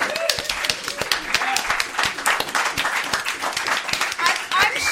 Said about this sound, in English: I just wanted the humorous juxtaposition, but then I also wanted to clap for the band. So. Okay, yeah, let's clap for the band.